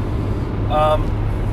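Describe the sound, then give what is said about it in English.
Steady, loud low rumble of an old car's engine and road noise from inside the vehicle, continuous throughout, with a brief tonal whine or voice-like sound in the middle. “Sorry if you guys hear a lot of background noise. My car's old, makes a lot of noise.”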